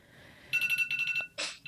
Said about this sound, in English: My alarm says otherwise.